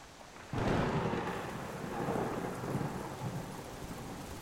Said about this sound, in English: With a great roar, the clouds are torn open, a torrential downpour soaking everyone within seconds.